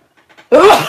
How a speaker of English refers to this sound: There is something in this room that makes me sneeze. I'm going to have to figure that out. I apologize.